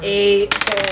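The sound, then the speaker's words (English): A brief steady tone gives way to a quick run of hard, rattling clicks as three eight-sided dice tumble and bounce across a table, fairly loud, settling after about half a second. “Roll. 3d8. These dice.”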